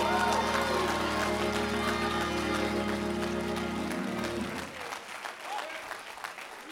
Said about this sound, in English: Y'all can nod and do what you want to do, but if I were you, I'd clap my hands in approval to my pastor.